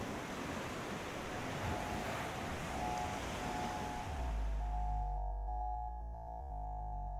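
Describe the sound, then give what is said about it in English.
Sea waves wash steadily onto the shore in a continuous, fairly loud hiss, then the sound drops to a deeper rumble with a faint steady hum underneath. No one speaks. “I've lived for years just down the street from the sea, so the idea of being away from it is so scary.”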